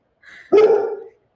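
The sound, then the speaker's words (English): A dog gives one loud bark, slightly drawn out into a yelping tone, preceded by a brief softer whine-like lead-in. “Hi, dogs. Hi, dogs.”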